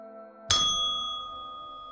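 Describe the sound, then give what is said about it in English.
A hand bell rings once with a bright metallic strike, its shimmering tone slowly fading. A steady low hum runs underneath throughout, and no one speaks. “At first they heard a single ring. Then the bell began ringing furiously.”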